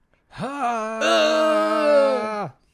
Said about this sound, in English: But it's also like just the quality of Robin Williams' scream. I think like adds to the comedy there.